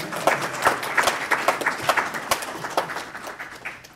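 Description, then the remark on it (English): An audience applauds steadily for several seconds as the admission counselor for San Diego Job Corps is introduced, a dense patter of hand claps at moderate volume with no voices over it. “And please, we clap here.”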